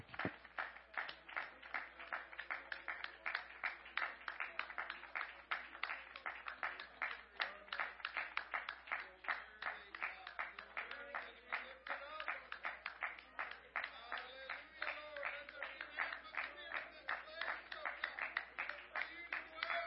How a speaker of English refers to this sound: Can we just clap our hands and love the Lord for just a few minutes?